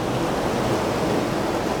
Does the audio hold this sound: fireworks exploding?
no